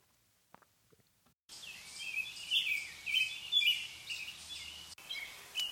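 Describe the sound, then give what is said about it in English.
After a brief quiet start, a dense outdoor chorus of birdsong rises, with many chirps and trilling calls overlapping steadily over a soft hiss of ambient background noise. “Since the pandemic began, you've probably taken pleasure in the increased volume of birdsong due to the reduction in traffic and other human noise.”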